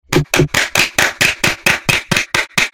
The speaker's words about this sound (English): Wow, he's applauding. Do you hear that, listeners? He's applauding.